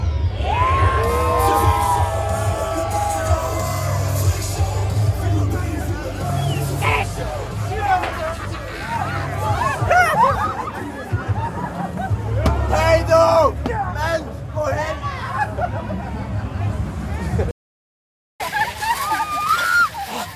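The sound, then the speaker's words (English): A large crowd at Europa Park's Traumatica Festival of Fear screams, whoops and shouts as the gates open, over a dense roar of chatter, loud and continuous, with a brief moment of silence near the end before the clamor returns. “Well, you can hear the screams.”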